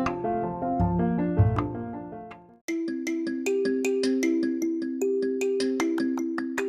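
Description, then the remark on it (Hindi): A melodic phone ringtone plays loudly as a call comes in, first a dense chiming tune, then after a brief break a brighter repeating electronic melody with a steady rhythm, no voices. “हाँ हम सोचे जितनी देर में फोन आया उतनी देर में हम लिमसी खा लेते हैं अपना.”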